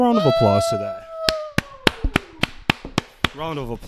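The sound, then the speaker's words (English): A brief round of applause: about ten sharp, evenly spaced claps at a steady pace, with vocal sounds just before and after the clapping. “Let's give a round of applause to that.”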